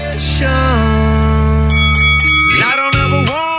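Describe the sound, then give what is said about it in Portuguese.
A gong rings out with a long, shimmering metallic sustain, then is struck again near the end, its bright clang blooming loudly with no voices present. “Então, sou e o gongo.”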